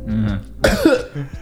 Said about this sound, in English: I think well-timed cough.